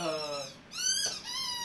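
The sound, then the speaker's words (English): A puppy lets out a string of high-pitched whines, about three drawn-out squeals in a row with a brief dip between them, fairly loud, with no talking. “Oh, he's doing the high-pitched one, too.”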